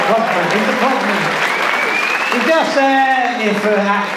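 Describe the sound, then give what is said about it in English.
An audience at a comedy gig claps loudly and steadily for a few seconds for a man who spotted the plug, dense and continuous, with shouted voices and cheers rising over the applause toward the end. “Anyway, look, it's give a big round of applause to that, the man.”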